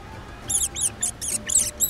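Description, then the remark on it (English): Meerkats squeak in a quick run of about six shrill, chirpy calls, evenly spaced, with no voices alongside. “Excuse me for asking, but are you guys meerkats?”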